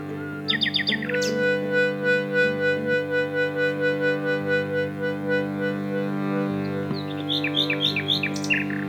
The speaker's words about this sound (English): You describe something about the way the Nightingale sings, which was about silence, that there is as much power to the silence in the Nightingale song as there is to the notes that it sings